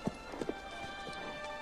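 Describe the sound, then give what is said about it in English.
A few crisp clip-clop hoof knocks sound in an uneven rhythm, two quick ones together, then softer taps trailing off over a faint steady hum, with no one talking. “Okay, don't do the horse thing, because AEW is proven.”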